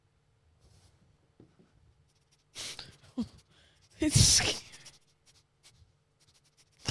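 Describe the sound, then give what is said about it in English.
A person imitates a dog sniffing: a few short, breathy snuffles, then a louder, longer burst of rapid nasal sniffs, followed by a brief spoken remark. “Tell me this isn't exactly how a dog sniffs.”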